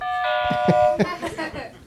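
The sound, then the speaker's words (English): A game-show buzzer that sounds like a doorbell chime rings once as a bright, sustained tone lasting under a second, with people talking over and after it, as a contestant tests their buzzer on Doug Loves Movies. “Come in. Hey, I don't know if... is this Doug's place?”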